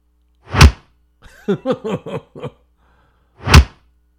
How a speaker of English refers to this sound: Because I'm going to film you as you walk around smacking a pork butt. It longs to be slapped and I'm happy to oblige. All right. Here we go. This is punching. This is a punch.